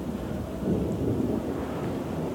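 Steady rain starting to fall outdoors in the mountains of Hawaii, with a low, continuous rumble underneath like thunder rolling through a storm; a dense, even wash of sound with no voices.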